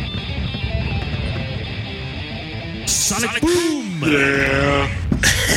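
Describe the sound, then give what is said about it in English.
A little goat bleats loudly, a wavering, nasal cry that rises then sags, following a few seconds of muffled background voices and noise. “I love that little goat.”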